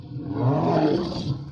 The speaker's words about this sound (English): The creature looked threatened. It jumped back when they ran up to it. Baring its yellow fangs, it roared and Lainey screamed.